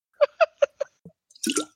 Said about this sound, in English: That hurt my throat. Hold on. Hold on. Ruining the magic here. I got to drink water.